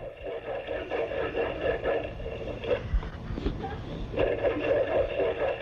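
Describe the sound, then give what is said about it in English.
Underwater seal calls, including a Ross seal: a dense, continuous chorus of warbling, siren-like tones with buzzy harmonic layers, swelling and fading over a steady hiss, with no voices present. “The other seals that you hear, the Ross seal, sounds like something you'd expect to hear on a radio telescope.”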